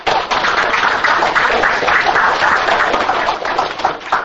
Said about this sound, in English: Well, first of all, we'll just give Tom McKenzie a round of applause.